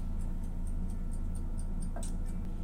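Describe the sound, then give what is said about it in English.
A kitchen timer, set after food is put in the oven, ticks steadily, about four crisp, high clicks per second, over a constant low hum, with no one talking. “And, got the timer going.”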